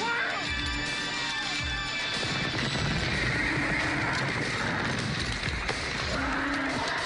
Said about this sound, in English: That horse just threw him off.